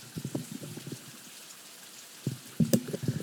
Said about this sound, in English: I don't know if you guys can hear the rain, but it sounds amazing.